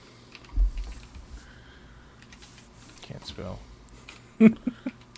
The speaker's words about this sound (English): You're typing, but that's fine. Google figure it out.